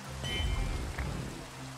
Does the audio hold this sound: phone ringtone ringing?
no